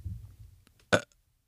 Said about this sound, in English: Not bad. I'm embarrassed. I thought it was going to be a lot better than that. It's all right. I mean, I think you may be the first burp on the podcast.